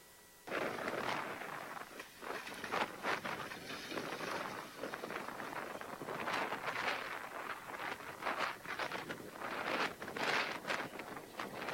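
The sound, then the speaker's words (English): Strong wind drives rain in a loud, continuous roar that surges and gusts throughout, broken by sharp crackling bursts of buffeting, at the Outer Banks. No voices are heard. “We had a lot of days of rain this past week, but a few weeks ago, there was a lot of wind that was added to the rain, and you had all kinds of stuff that was happening, and especially at the Outer Banks, and you may have seen this particular video.”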